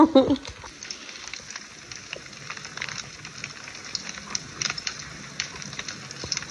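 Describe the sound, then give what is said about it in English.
A fireplace fire crackles steadily, with dense small pops and snaps over a soft hiss; a brief voice sounds at the very start. “Peaceful fireplace.”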